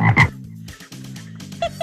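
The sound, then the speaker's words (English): A chorus of cane toads croaking in a flooding area in Australia, with a loud burst of calls at the start followed by steady, overlapping low trilling croaks and a couple of sharper chirps near the end. “Look at those toads. They're thirsty.”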